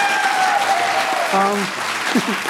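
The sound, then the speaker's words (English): A debate audience applauds the con side steadily for the whole stretch, dense clapping at an even loudness, with a few whoops and a sliding whistle-like cry rising over it. “Like, yeah, round of applause for them.”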